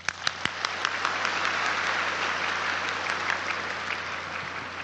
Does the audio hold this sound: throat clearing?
no